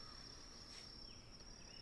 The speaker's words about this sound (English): As you hear the chirping of cicadas and crickets nearby. The grass grows wild.